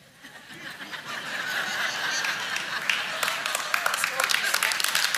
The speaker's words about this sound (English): And they're clapping because they love you. We do.